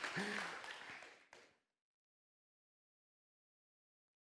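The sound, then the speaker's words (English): Brief, soft golf-clap applause from an audience, a light patter mixed with a few murmuring voices, fading out after about a second and a half into silence. “That's a patty cake. That's a golf clap.”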